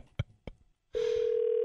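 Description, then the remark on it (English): Two sharp clicks, then a steady, loud telephone ring tone on an outgoing call begins about halfway through and holds unbroken to the end, with no voices. “Lynette, answer the phone”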